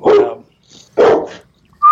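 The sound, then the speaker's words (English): A chocolate Labrador named Beaumont (Bo) barks twice, loud, the deep full barks spaced about a second apart with a brief quieter sound between them. “What kind of dog is he? Chocolate Lab.”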